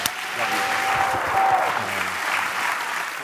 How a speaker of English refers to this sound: Give Jesus a hand clap as your pastor comes.